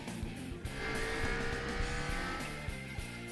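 A car engine roars as it speeds up, with a sustained high-pitched squeal of tires skidding over the top, loud and close for a few seconds.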